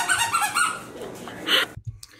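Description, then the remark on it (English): A squeaky dog toy, one of two toys shaped like a little ice cream cone and a cow, squeals several times in quick, wavering bursts, then lets out one louder, sharper squeak before going quiet, leaving a few soft thumps. “But I got him this little ice cream cone and this cow, and they both squeak.”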